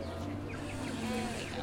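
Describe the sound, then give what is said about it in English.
A flock of sparrows chirps at once in Vörösmarty Square, a dense, overlapping chatter of short, high tweets, fairly faint over a steady low hum. “in Vörösmarty Square, and it's just got like a load of sparrows in it. Just chirping away.”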